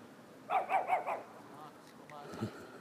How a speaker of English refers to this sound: Neighborhood dog, he didn't like me talking.